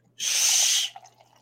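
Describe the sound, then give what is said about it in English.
A brief pour of coffee from a French press: a steady hissing splash lasting under a second, then a few faint trickles and quiet, with no one talking. “I got my fancy French press.”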